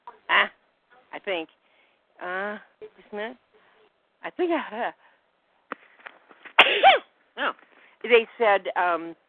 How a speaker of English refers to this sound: I'm going to sneeze.